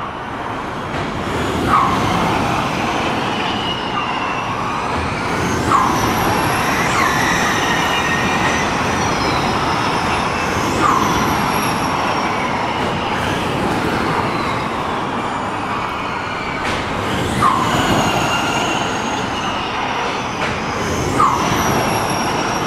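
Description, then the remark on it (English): Electric Neo racing cars whoosh past again and again on a circuit just under 2 kilometres long, over a steady, dense roar, each pass marked by a brief, sharp high-pitched yelp, roughly every four to five seconds. “That yelp that they make when they go straight past us here, I'm wondering what that sound actually is.”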